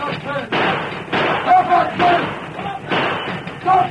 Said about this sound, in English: Suddenly, two hooded and mounted figures raced toward the engine, firing as they came.